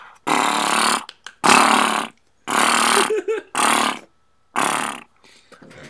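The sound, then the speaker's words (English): A voice imitates a Gatling gun in five loud, harsh, rattling bursts separated by short pauses, each a gritty rapid-fire buzz produced from the throat. “I've practiced so much on my Gatlin gun noises.”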